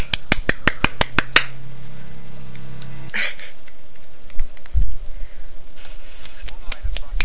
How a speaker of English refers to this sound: Do your one-hand clap. Alright. Everybody clap for the one-hand clap. I can do a one-hand clap, too.